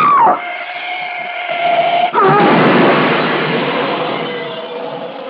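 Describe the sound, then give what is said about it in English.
A steady wailing, whining tone gives way after about two seconds to a loud crash as a black shape speeding down the road smashes Freddy Butler's car, followed by a long, roaring noise that slowly fades. “That ugly black shape, it smashed Butler's car to bits as though it were an eggshell.”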